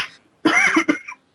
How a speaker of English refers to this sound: I was coughing.